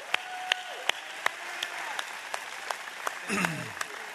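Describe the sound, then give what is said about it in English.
Applause for volunteers from the Dojo as they make their way out, made of sharp, evenly spaced claps, roughly three per second, over a low hum of background noise, with a brief swell of murmuring partway through. “Can we give a big round of applause to our friends at the Dojo as they make their way out here?”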